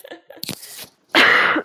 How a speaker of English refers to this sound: Here, I'm going to cough. Oh, I'm going to pause. Sorry.